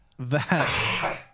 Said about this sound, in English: That was an intense cough. Yeah, are you okay? I just had to do that. Hey, I don't think we should have podcasts when we're sick.